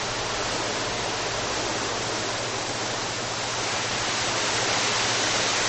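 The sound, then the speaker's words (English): A storm sound effect: a steady, unbroken rush of storm noise, like heavy rain and wind, with a low droning hum beneath. It stays loud and even throughout, with no voices. “The storm is upon us.”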